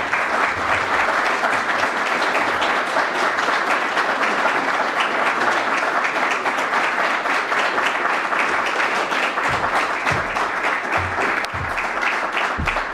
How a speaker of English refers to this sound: So with your applause, and I want sustained applause, please, dear audience, please welcome Admiral Z.